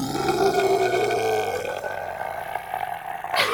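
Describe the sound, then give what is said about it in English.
A person voices a long, guttural creature roar, a rough, throaty growl that holds steady for a few seconds, with no other talking. “It's going to let out a guttural roar.”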